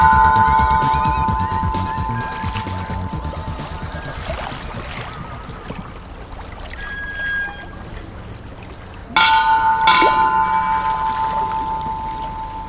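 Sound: boat on water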